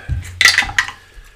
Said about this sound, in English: Let's have their roll. Bring forth the dice.